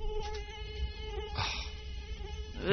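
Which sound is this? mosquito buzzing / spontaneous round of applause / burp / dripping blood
mosquito buzzing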